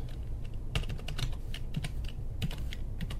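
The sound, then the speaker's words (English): Rapid typing on a computer keyboard to enter an email address for activating an app: bursts of sharp, clicky keystrokes in an uneven rhythm, some clustered quickly together, over a low steady background hum. No one speaks. “Let me just make sure I typed it right.”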